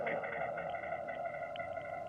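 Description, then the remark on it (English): A steady, processed tonal wash of blended harmonics with a smeared, reverberant tail, holding at an even, moderate loudness for about two seconds with no one talking. “I heard some reverb there.”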